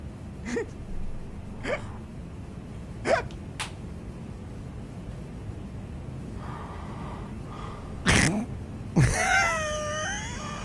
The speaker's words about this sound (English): And for everyone listening, Chopper Reed has just fallen asleep. In his own interview. They're interviewing him. And he has passed out, and he is going to begin to snore about now.